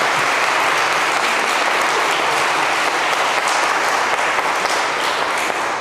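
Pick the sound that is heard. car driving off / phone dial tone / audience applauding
audience applauding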